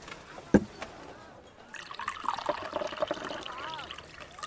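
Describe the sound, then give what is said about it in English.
A sharp knock, like a cup set down, then liquid pours steadily into a cup for a few seconds, a bubbling trickle whose pitch rises as it fills. “Then bring me the cup. Shall I pour over it?”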